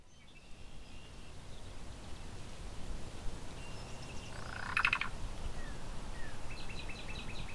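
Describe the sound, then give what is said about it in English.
A black-billed cuckoo, a few feet away while preening, gives a single short call partway through, close and moderately loud, over steady outdoor background noise with faint chirps from other birds. “So I'm up close with a black-billed cuckoo. It's just a few feet away, preening.”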